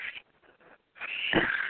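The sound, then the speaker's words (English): A dog whines in a high, thin voice: a brief squeak, a short pause, then a longer drawn-out whine that swells louder before trailing off, with no talking. “Yeah, my dogs are stupid.”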